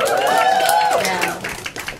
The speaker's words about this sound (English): My family is from a country called Bangladesh. Yeah, yeah. Clap it up for Bangladesh.